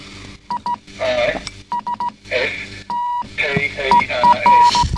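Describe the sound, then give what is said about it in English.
Short and long tonal beeps near one pitch tap out Morse code spelling "Crummy Sisters" in uneven bursts, interleaved with clips of other sounds and voices talking between the tones. “Yes, that spells out Crummy Sisters. Yeah. In Morse code.”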